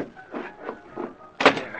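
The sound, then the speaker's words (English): A few soft rumbling slides are followed by one sharper, louder clack as a closet door is pushed shut. No one speaks. “Put this empty wallet back in Blake's pocket and shut the closet door.”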